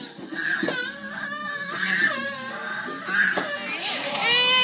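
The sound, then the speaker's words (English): A little boy cries and screams without letup in a tantrum, high strained wails rising and falling in pitch, swelling into a shrill, piercing shriek at the end. “everywhere I went, he screamed, he threw tantrums, and I looked like a negligent mom.”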